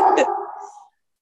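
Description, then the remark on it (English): A single short bark from a dog, sharp at the start and then trailing off into a brief whine, followed by silence. “My dogs are barking.”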